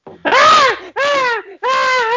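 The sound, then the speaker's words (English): A man screams in pain three times in quick succession, each cry loud, strained and wavering, with brief gaps between the anguished wails. “it's … is screaming”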